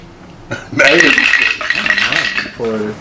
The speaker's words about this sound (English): Wow, that was a lot of dice. Did y'all hear that? That was a lot of dice.